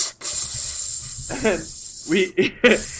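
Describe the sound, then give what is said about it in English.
A person makes a long, breathy hissing noise with their mouth, imitating steam escaping as a door flings open, like the door of the Millennium Falcon, broken by a few short voiced vocal sounds near the end. “I just imagine, like, you know, like, the Millennium Falcon, whenever it opens the door, all that steam comes out? I just remember it go opening.”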